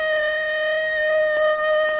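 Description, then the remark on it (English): A long, steady wolf howl holds one mid-high pitch for two seconds, fairly loud and unwavering, with a brief dip in volume near the end and no voices. “A wolf.”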